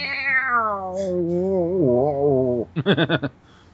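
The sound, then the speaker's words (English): A voice imitates an annoyed cat, a long drawn-out meow sliding downward into a wavering growl, then a quick run of five short, choppy yowls before it stops. “I don't even know why I had to look for a sound effect if you're going to do that.”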